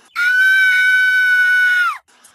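A single loud, shrill cartoon scream of Flanders, held steady for nearly two seconds, then sliding downward in pitch as it cuts off, with no talking around it.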